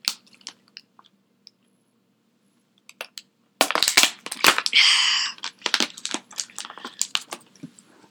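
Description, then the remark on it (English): Someone drinks water after a few seconds of near silence, with crinkly bottle handling and wet sipping and gulping noises in quick, irregular bursts. No one speaks. “And let me drink some water.”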